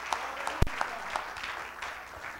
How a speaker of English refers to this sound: Come on, let's give God a hand clap for what he's done and what he's doing.